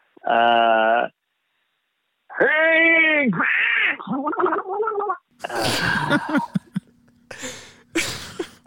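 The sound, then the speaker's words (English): A loud voice lets out a series of strained, gurgling grunts, like someone pushing hard, with short pauses between bursts and a few rough sputtering noises toward the end: a person vocally imitating the pushing sound before a fart. “We're going to add the fart in post, but we're going to ask every guest, what would be your like grunt or pushing fart sound?”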